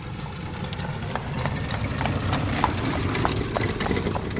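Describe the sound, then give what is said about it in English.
Horse hooves clip-clop at a steady trotting rhythm as a horse and buggy passes by on a road in Burgholz, the sharp regular knocks standing out over a low rumbling road background. “My cousin Eli just went by in his horse and buggy and I waved and he kind of gave me a dirty look and kept going”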